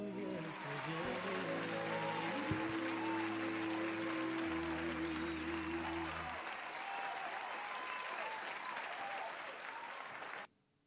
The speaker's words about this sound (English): Round of applause.